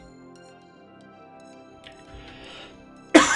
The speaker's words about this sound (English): I'm so sorry for the cough. The air is dry right now here in Ohmtown.